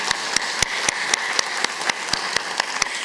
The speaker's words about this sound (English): So can we just give a round of applause to the women in our life, the mothers?